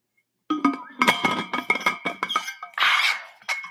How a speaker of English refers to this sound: Hold on, let me get a drink of water. Oh my god, my throat is like scratchy.